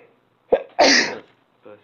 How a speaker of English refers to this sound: Bless you. Excuse me. Bless you. I can't afford all this sneezing.